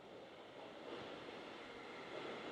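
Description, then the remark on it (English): A train rumbles through a subway station, a steady, loud roar of wheels and rushing air that holds constant for a few seconds, with no voices. “I love this subway station.”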